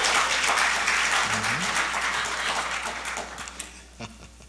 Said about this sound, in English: Come on now. We got to clap from this side and clap from this side.